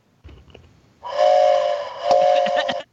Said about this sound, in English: give me a really sad whistle blow.